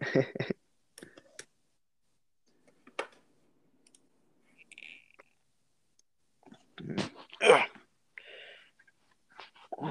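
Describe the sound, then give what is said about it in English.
Scattered clicks and taps from a computer keyboard and mouse as a man checks his computer, irregular, with brief mumbled vocal noises breaking in between them. “Checking his computer.”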